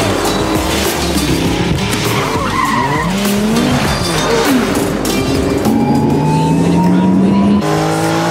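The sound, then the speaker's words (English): During a car chase, car tires screech and skid loudly amid revving engines, with rising and falling squeals layered over a dense, continuous roar of motor noise. “Oh, it's a beautiful day for a car chase.”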